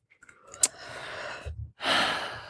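A breathy yawn: a long drawn-in breath, a short pause, then a louder airy exhale trailing off, with no talking.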